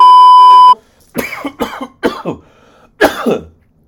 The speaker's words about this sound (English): Sorry. COVID. I'm going to need you to get that together while we're on camera. Don't be coughing in front of the camera.